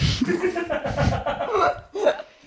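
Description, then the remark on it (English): A sharp, breathy sneeze bursts out near the end, preceded by a brief pause, after a stretch of chuckling and stifled laughter. “Gesundheit.”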